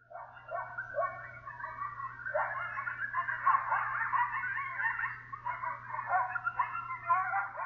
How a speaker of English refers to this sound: I think this contributes to their mystery because they're often heard howling in the darkness much more than they're seen. At night, coyotes howl and emit a series of short, high-pitched yips.